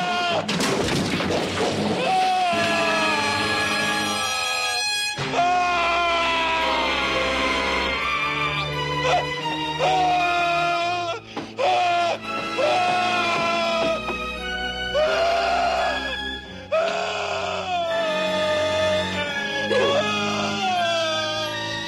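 A man in a film scene screams in agony as he is scalded by extremely hot water, loud, with long anguished wails and strained cries rising and falling over a dense, continuous background for about twenty seconds.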